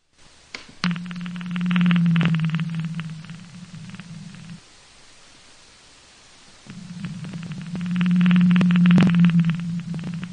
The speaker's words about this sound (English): here's an example of what a blue whale sounds like.